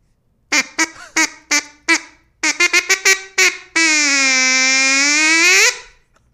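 A loud string of about a dozen short nasal duck quacks in an uneven rhythm, ending in one long drawn-out quack that holds for a couple of seconds, as ducks fly in over a small pond. No one speaks.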